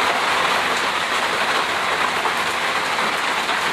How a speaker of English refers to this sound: You hear me? It's big rain down here. Y'all probably can't even hear me, but it's all good.